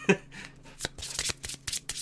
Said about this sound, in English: It scratches people like physically, like just shuffling, snapping the cards on the table, like all of those little things. The flicker.